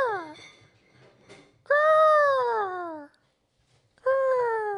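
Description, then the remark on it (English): A human voice imitates an eagle's screech: a few loud, high, wavering cries with falling pitch, the longest lasting over a second, separated by short pauses. “And the Great American Mining Eagle has landed in Austin, so I got to give you an eagle call.”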